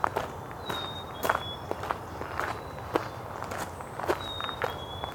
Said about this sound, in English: Okay, some white-throated sparrows.